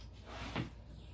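A single soft slide and bump of a small drawer for storing die cuts, brief, with a muffled low thud at the end against a quiet background hum. No one speaks.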